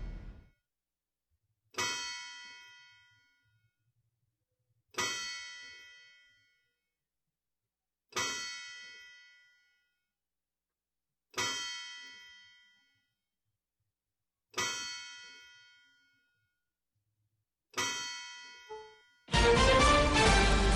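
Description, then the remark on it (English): The courthouse clock bell, aired on radio station WGNS in Murfreesboro, chimes 7 o'clock with slow, evenly spaced strikes about three seconds apart, each ringing tone fading before the next, then a sudden loud burst of sound cuts in. “Courthouse clock time, 7 o'clock.”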